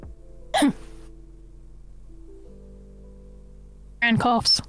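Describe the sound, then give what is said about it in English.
A person coughs: one short, sharp burst, then after a long quiet stretch a rougher, throaty cluster of a few coughs, with a faint steady hum underneath throughout. “coughs.”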